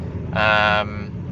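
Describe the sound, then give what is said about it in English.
Steady low road and engine rumble inside a car being driven home from work, with a loud, brief horn-like tonal blare cutting in midway before the droning hum continues alone. “And it is an episode that I bring to you from my car as I'm driving home from work.”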